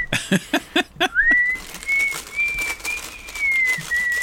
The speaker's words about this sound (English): Whistling while you're eating crackers. This is a ventriloquist.